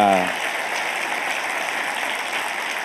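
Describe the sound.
Steady applause from an audience, a dense wash of many hands clapping at an even loudness, right after a brief voiced tone at the very start.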